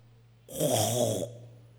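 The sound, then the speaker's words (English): A preacher imitates a snore with their voice during a sermon: one loud, raspy, drawn-out snort lasting under a second, over a faint steady low hum. “We are snoring.”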